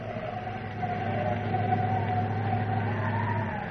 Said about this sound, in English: Nothing but dust, and more dust, and that wind howling.